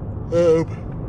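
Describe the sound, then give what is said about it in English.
A short, breathy yawn with a voiced, steady mid-pitched tone lasting about a third of a second, rising out of a low background hum and fading quickly. “Excuse my yawning.”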